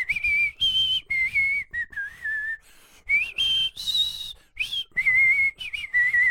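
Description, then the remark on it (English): A person whistles the main theme melody of a TV show, a clear, lilting tune rising and falling in phrases with brief breaths between notes, no talking over it. “I didn't know you could whistle.”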